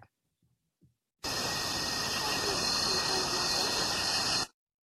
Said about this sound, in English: Oh, I hear crickets. It makes me just like want a nice summer night.